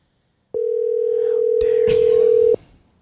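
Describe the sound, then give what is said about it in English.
A phone call to someone's parents rings out on the line: one steady, loud electronic ringback tone lasting about two seconds, with faint clattering noise in the background, and no one picks up. “They're only child and they can't answer the phone.”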